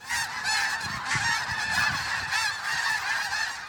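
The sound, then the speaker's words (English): A dense chorus of hundreds of snow geese honking nonstop, countless overlapping calls blending into a loud, continuous clamor from a large flock gathering at Richmond's North Dyke at River Road and blocking a residential street, on their annual migration back to breeding grounds in Alaska and Siberia, with no voices present. “Global viewer Lester Sue captured this video of hundreds of snow geese flocking to Richmond's North Dyke at River Road, blocking a residential street.”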